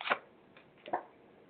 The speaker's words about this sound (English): Yes, and in case you guys didn't hear me, I'm using Nudges from Your Spirit, the Melissa Quarter deck. Sorry, I'm having a difficult time shuffling this time.